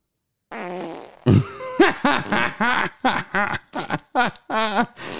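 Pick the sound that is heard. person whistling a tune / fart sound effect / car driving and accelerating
fart sound effect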